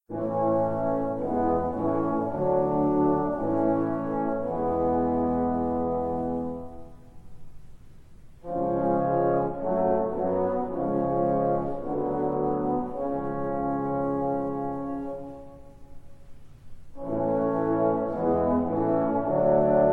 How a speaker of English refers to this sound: Let's listen to the openings of both of these first period operas, 1841's Nabucco, and then 8 years later, Battalia.